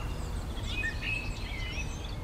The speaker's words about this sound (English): One songbird that just sung its little heart out in Benmore. It was just the most amazing virtuosic performance from this one bird that sang continuously while we were recording, and I was just amazed.